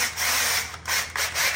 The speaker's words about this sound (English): I don't know what you're going to call it, except a Forstner-style bit that also has a pilot, a drill bit, pilot drill, something or another, whatever I'm trying to say.